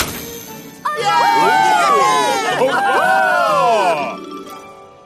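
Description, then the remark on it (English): A crowd bursts into a loud cheer as the tree lights are switched on, after a brief quiet moment, many high voices overlapping in rising and falling whoops for about three seconds before fading away. “At which the tree lights were switched on and everyone let out a big cheer.”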